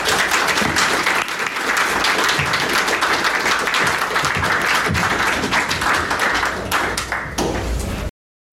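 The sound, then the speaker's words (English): An audience applauds a speaker at the close of an event, many hands clapping in a dense, even patter that stays loud throughout before cutting off abruptly at the end. “But let's please give David a round of applause.”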